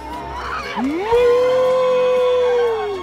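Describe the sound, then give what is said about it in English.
A person imitates a cow with one long, drawn-out moo that swoops upward in pitch, then holds steady and loud for about two seconds before easing off slightly at the end. “Oh, I can tell you what it does to me to hear you moo again.”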